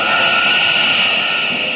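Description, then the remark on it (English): A train speeding at 90 miles an hour roars steadily and loudly, a continuous rushing rumble topped by a sustained droning tone that holds at an even level throughout, with no voices. “Good speed for a train, but it can't leave Superman behind.”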